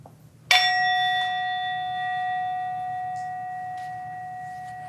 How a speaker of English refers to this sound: Your hands rested gently on your legs, and you can just listen for the fading sound of the singing bowl to invite you to let your eyes close, focus softly on one part of the room.